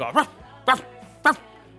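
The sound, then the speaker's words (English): A person imitates a dog barking: three short, voiced woof sounds spaced about half a second apart, clear, with no other talking. “Dude, I swear to God, all these girls at one point, they start barking like dogs at him.”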